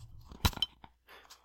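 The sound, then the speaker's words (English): A cup clinks against a glass in a toast: one sharp knock followed by a quicker, fainter tap with a brief high ring, then soft rustling. “Oh, that was a cup impotent to, cheer. Cup to glass.”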